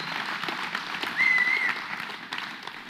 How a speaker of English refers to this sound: And I just think, just give JP a hand clap for whatever he's doing.